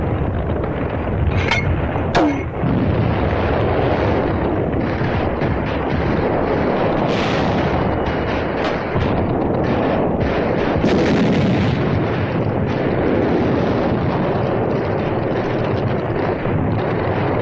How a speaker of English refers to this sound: Although at the end of the second day, D plus one, we breathe a little easier, mortar squads continue to hammer enemy points of resistance.